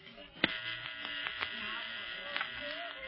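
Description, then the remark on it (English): A steady, harsh electronic buzz from a radio receiver set inside a plane, the octopus signal, holding a constant midrange drone throughout, broken by a few brief sharp clicks and crackles. “Listen, the octopus signal.”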